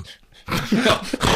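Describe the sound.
A voice imitates a dog, starting with a few soft whimpering breaths and then breaking into a loud, rough growl with whiny yelps that lasts about a second.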